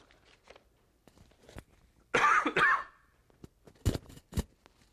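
Two loud, harsh coughs in quick succession, followed by a few sharp clicks and faint rustling in otherwise quiet surroundings.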